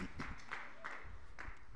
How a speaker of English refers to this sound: Let's give a round of applause of welcome to any guests that are here today, those watching on the live stream as well.